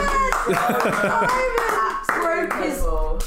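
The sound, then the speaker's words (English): A steady patter of applause runs for a few seconds while several voices talk and laugh over it, the clapping dense and continuous rather than in distinct beats. “Well, thank you for playing today.”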